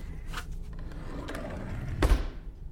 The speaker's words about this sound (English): Take the file and shut the drawer.